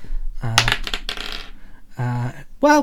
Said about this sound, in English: He misses Bernard, but this glass vial shatters in front of him, sending a bright flash of silver light onto him.